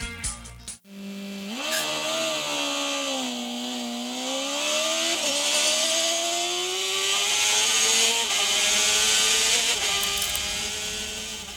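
A single MotoGP racing motorcycle engine screams at high revs, its pitch dipping and climbing as it shifts and accelerates, loud throughout with no voices.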